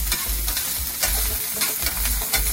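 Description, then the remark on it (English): Oil with garlic sizzles steadily in a frying pan, a bright crackling hiss with scattered pops, while something is stirred with soft repeated scraping strokes underneath. “It's gonna pop and splash because oil and water don't mix, don't get excited.”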